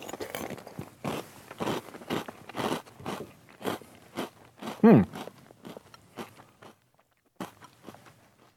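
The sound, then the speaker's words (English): Loud crunching of a mouthful of Reese's Puffs Cluster Crunch, a sugar-coated chocolate and peanut butter cereal, with rapid rhythmic bites and crackles repeating for several seconds, then a brief pause before a few more crunches. “Let me give this a whirl. Again, Reese's Puffs Cluster Crunch.”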